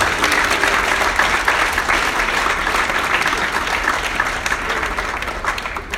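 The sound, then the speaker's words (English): An audience bursts into sustained applause for Jesus, a dense, steady wash of many hands clapping at an even loudness for several seconds with no one speaking over it. “I think you're supposed to clap for Jesus.”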